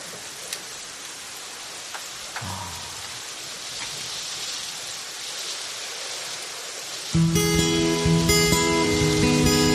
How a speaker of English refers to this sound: Listen to that rain.